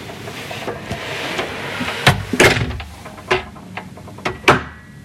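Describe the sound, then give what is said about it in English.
A lock on a hotel door grinds and clatters as it is tried, a series of harsh, raspy mechanical bursts and clicks spaced irregularly over a few seconds, with no one talking. “There's a weird lock on the hotel door that kind of makes a weird sound.”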